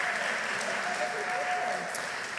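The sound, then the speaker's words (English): A room full of people claps and cheers steadily for a volunteer who is in the room with her little boy, a dense, continuous wash of applause with a few whoops rising above it, loud throughout. “So let's cheer for her because she's with her little boy.”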